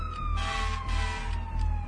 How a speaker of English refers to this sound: I hate sirens.